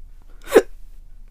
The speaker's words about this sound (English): That was ironic. Well, let's hope I don't have the hiccups for the rest of the show. You cursed me with hiccups.